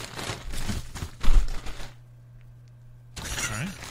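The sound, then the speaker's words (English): Crinkly plastic bag rustling in dense, scratchy bursts for about two seconds as a Chipotle food bag with chips is unpacked, a brief lull with a low steady hum, then the rustling picks up again. “You sound like a fucking cat digging through a bag of trash.”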